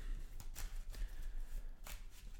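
Cards being shuffled, a few soft papery riffles and snaps spaced irregularly over a low, steady background rumble, with no one speaking.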